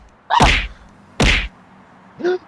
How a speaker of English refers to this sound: As you can guess, Adam punched Ismael repetitively until he stopped.